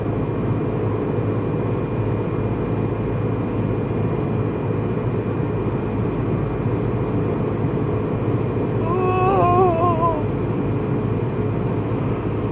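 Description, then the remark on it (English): Steady low road roar on a highway fills the scene, then a car's whine and rush swell briefly near the end as a faster car with Washington plates, driven by a middle-aged woman, approaches and passes before easing back into the constant drone. “Oh, I got a car coming up.”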